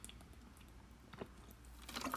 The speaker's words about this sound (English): Take a sip of water here.